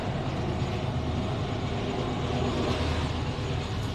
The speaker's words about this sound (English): So, I want to wrap up here, guys. As that train goes by and we have a segue, let me wrap this up.